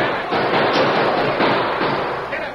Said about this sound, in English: Bullets chugged into the thick walls of the masked man's shelter and streaked through the open windows.